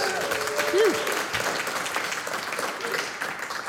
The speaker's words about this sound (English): You got one of our two smaller questions right. Big round of applause.